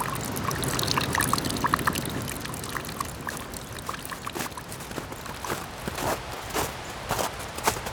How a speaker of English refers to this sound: There are a few trails around the falls that follow the river. They're usually gravel and covered by forest. The crackling and crunching of leaves, twigs, and gravel under your shoes is replaced by snow being patted down by your boots.